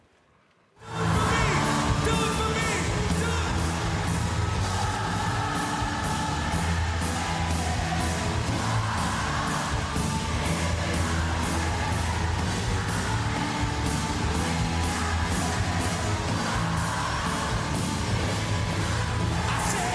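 A crowd sings along to a loud rock song with a steady, driving drumbeat; the full-band music kicks in after a brief moment of quiet and stays dense throughout.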